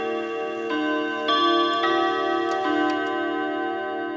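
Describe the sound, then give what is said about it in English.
A clock chime rings out the Westminster chimes melody, about four bell-like notes in a steady, stately rhythm, each tone ringing on and overlapping the next, with no voices. “And what is my favorite explanation for why this particular phrase works so well is that if you take the pitches, they're very similar to the pitch pattern of the Westminster chimes.”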